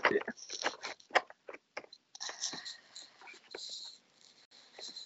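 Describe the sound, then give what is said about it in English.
Tarot cards, just taken out of the box, being shuffled on the microphone: a run of sharp, papery snaps and slaps in the first two seconds, then a steadier, softer flutter of riffling cards with a few crisp clicks. “But here's shuffling them on the microphone for some real that way time.”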